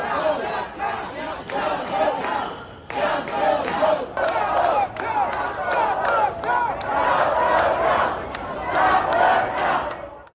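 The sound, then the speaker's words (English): A large crowd chants and yells "stop the votes" together in loud, rhythmic bursts, many voices overlapping in a steady, energetic roar with short pauses between shouted phrases. “We've got one group yelling out, stop the votes.”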